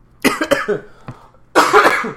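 A man coughs in a couple of harsh, close bursts, a quick cluster at the start followed by a brief pause, then another loud, rough cough to finish.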